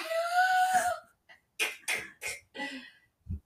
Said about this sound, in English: Maybe it's because of... you're coughing.